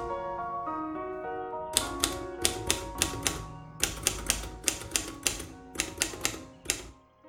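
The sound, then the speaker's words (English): Typewriter typing: crisp keystrokes clacking in quick bursts with short pauses between, following a few seconds of sustained musical tones that continue faintly underneath. “Now, get into town and pawn that blasted jewelry, and don't come back without a typewriter.”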